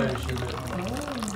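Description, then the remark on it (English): Coffee pours steadily from a pot held up high into little espresso-like cups as each guest is served, a continuous liquid trickle while voices murmur in the background. “She pours the coffee from up high into little espresso-like cups.”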